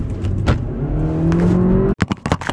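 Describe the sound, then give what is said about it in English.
A car engine on a road outside revs loudly, its droning pitch climbing steadily for about two seconds before cutting off abruptly, followed by a few short rumbling bursts. “Sometimes it gets a little crazy on the roadways, I realize.”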